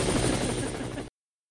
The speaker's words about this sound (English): We've got to get out of these helicopters. This is costing us way too much. We've ruined our yearly budget on this helicopter,